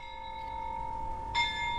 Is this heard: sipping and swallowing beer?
no